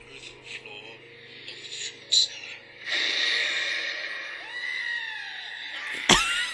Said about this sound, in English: Like, nobody laughs as hard as that as I do. I just, for some reason, his scream is so damn funny. I can't do it. Like, I can't even get that high, yeah.